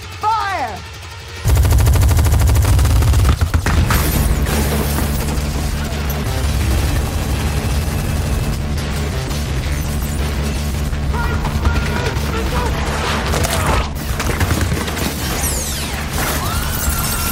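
Heavy, continuous fire from at least three giant Gatling guns in a film action scene erupts abruptly after a brief lead-in and roars on without pause, loud and dense, with crashes and clatter mixed into the barrage and faint voices buried underneath.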